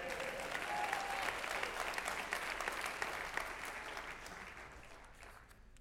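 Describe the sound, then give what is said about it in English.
A crowd applauds steadily, dense overlapping hand claps filling the space at a fairly even level, then thinning slightly and fading toward the end. “Clap your hands, everybody, please.”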